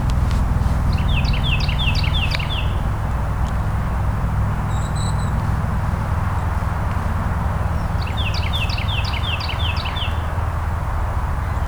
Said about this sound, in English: So red-winged blackbird, they're not... Yeah, there's a few here in the winter, but not in flocks so much. Certainly not singing through the winter. So they're a good sign of spring.